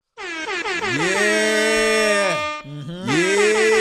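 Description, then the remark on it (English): A loud air horn sound effect fires a quick stutter of short blasts, then holds one long blaring note, drops out briefly, and blasts again. No voices. “Air horn.”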